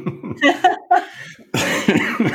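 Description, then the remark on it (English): Several harsh coughs, a sputtering cluster at first, then a short pause followed by a louder, raspier burst of coughing that fills the space. “Yeah, I'm coughing.”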